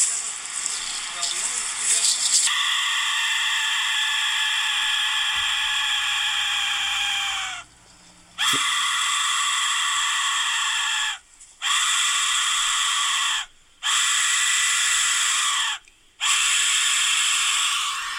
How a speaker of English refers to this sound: This is the Aztec death whistle, and I'm going to apologize in advance for your ears. This is a like mind-splitting sound. Hit it.